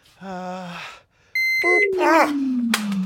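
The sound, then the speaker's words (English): A steady, high-pitched electronic beep sounds for about half a second, preceded by a lower buzzy tone. A falling drone and voice-like sounds follow. “here's the beep”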